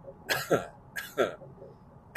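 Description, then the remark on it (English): Two harsh coughs from a man with a lingering cough, about half a second apart, each a rough double burst, with the start of a third right at the end. Nobody speaks. “Can't shake his fucking cough either.”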